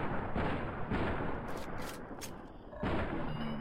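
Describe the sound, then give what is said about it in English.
Heavy, booming video game gunshots fired at Robo Scorpions: a few loud blasts spaced unevenly, merging into a dense, rumbling wash of noise with bright crackling bursts between shots. No one speaks. “Okay, so my chems let me get off two more rounds from the for all the jet that I took.”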